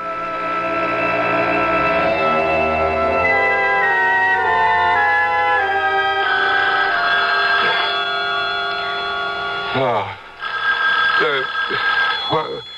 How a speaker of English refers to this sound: The phone.